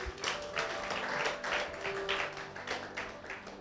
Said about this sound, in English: Thank you, Alex. Let's give Alex a round of applause.